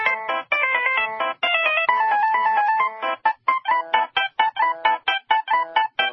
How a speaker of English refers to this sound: But first, let's recap our top three ringtones. Number three. Coming in at number three, Rondo alla Turca by Mozart.